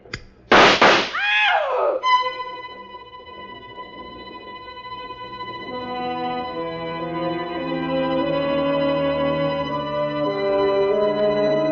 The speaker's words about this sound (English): The shots missed Claire. They missed me. They were, after all, shots in the dark.